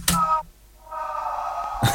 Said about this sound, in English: Next one is falling scream.